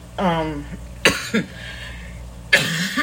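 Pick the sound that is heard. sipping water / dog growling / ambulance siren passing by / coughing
coughing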